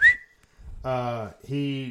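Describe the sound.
A quick, sharp whistle aimed at a man, followed after a short pause by two drawn-out, voiced vocal sounds.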